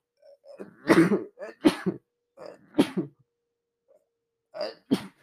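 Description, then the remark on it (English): A run of sharp, breathy allergy sneezes, four or so bursts with short pauses and quick inhales between them, fairly loud and with no talking. “oh, I need to sneeze.”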